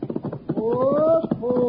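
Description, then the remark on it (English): Horse hooves clip-clop in a quick, steady rhythm of sharp knocks as a rider comes back down the street from the post office, continuing as a man's voice calls out loudly over them. “Hey, there he is now, riding back from the post office.”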